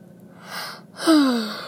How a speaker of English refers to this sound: And I'm yawning because I didn't want to get out of bed today. It's not so much I didn't want to get out of bed, as I couldn't fucking bring myself to do it.